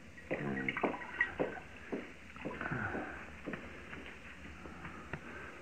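Hot water is poured and sloshed into a pan, with a run of uneven splashes and trickles, fairly quiet, with a faint clink of metal near the start.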